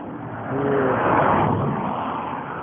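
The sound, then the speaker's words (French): A car passes by on a road, its broad rushing noise swelling over a second to a peak and then slowly fading as it moves away, with no one talking. “Encore une canette de coca bien déchirée avec une autre voiture qui passe.”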